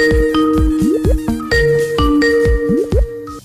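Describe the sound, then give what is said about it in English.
A phone ringing tone plays alone, a loud electronic melody of repeated bright tonal notes with short sliding pitches, cycling steadily through the whole stretch with no talking. “It's ringing anyway.”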